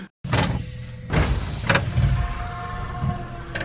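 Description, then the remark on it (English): A spacecraft door slides open with a steady motorized whir, broken by a few sharp hissing bursts, running for over three seconds with no voices. “Now Chip. Open the door.”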